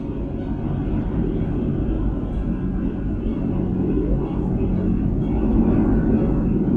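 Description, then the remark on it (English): A steady, low aircraft engine rumble drones continuously at an even loudness, deep and dense, with no breaks or changes in pitch across the whole stretch. “Behold, the bat plane.”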